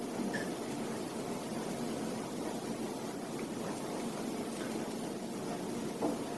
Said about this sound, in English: You can hear a bit of the traffic. And as you know, there are many thousands of cars and trucks running around all over the city.